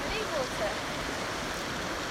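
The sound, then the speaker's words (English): Steady rushing of flowing river water at a river crossing, a broad continuous wash of noise, with a couple of faint high chirps briefly rising above it near the start. “Squeaky bum hole river crossing.”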